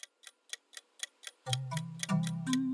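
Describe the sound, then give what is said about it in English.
A clock ticks in a brisk, steady rhythm, crisp, as a timer for a lightning round of news; about halfway through, a low sustained musical drone swells in beneath the continuing ticks. No one speaks. “if you'll start the clock for us”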